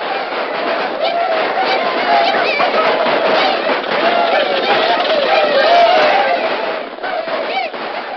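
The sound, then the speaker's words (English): A dense, roaring crowd of many voices shouting and clamoring together in the gold rush boom camp of Mariposa after gold was struck in the Palermos, a steady loud wall of excited yelling and chatter that holds throughout with no single voice standing out. “overnight, the peaceful settlement of Mariposa was changed to a surging, roaring boom camp.”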